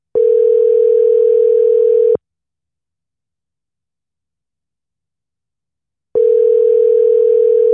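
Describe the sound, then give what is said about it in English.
An outgoing phone call's ringing tone: a steady, loud electronic buzz lasting about two seconds, then a long silence before a second ring begins. No voices. “Oh, you know when it gets to that third ring. Yeah, after the third ring, you ain't got the juice like that.”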